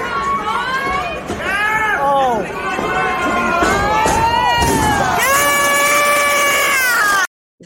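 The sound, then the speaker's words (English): A loud crowd cheers and screams nonstop at a show at the Von Braun Center, many high, wavering voices overlapping, with one shrill scream rising above the rest before everything cuts off abruptly. “Yes, that's me screaming my balls off.”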